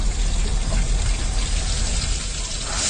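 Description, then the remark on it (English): A kitchen faucet runs steadily, a continuous rush of water with methane gas coming out, splashing into a sink with no pauses and no voices, holding an even loudness throughout. “In this video, a man holds up a match to his running kitchen faucet, which then ignites due to the methane gas coming out of the sink.”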